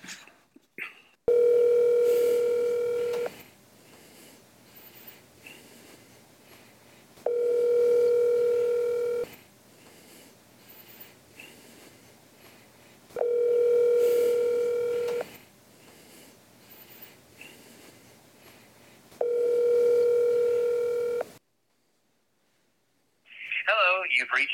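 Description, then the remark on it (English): An outgoing phone call rings four times, each steady ringback tone lasting about two seconds with regular gaps between. After a brief silence, a recorded voicemail greeting starts answering at the very end. “You want to call him?”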